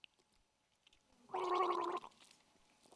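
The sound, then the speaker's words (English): A short burst of someone drinking water, a bubbly, throaty gulping sound lasting under a second, loud against an otherwise quiet background with no talking. “So I'm going to drink some water.”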